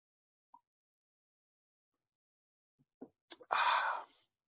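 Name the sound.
sipping coffee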